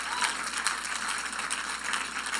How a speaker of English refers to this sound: And so I wanted to bring them up here just for us to give them a huge round of applause to say thank you. So let's give them a huge round of applause, say thank you.